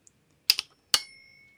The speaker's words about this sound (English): What was that? It was my alarm clock.